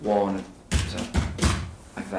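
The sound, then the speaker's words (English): A witness thumps his fist on a wooden witness stand three times in quick succession, loud, right after a man's brief speech, with his voice resuming afterward. “For the record, the witness thumped on the witness stand with his fist.”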